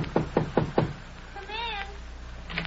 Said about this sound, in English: Knock on that door, will you?